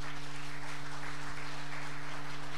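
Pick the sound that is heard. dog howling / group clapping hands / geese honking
group clapping hands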